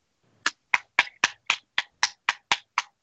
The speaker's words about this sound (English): What was that? I was clapping. Oh, clapping.